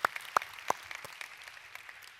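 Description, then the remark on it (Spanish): An audience at Sugar Creek church gives sparse, scattered applause: a few sharp, distinct claps at the start, then a thin patter of light clapping that tapers off, with no voices. “Por lo menos algunos aplaudieron.”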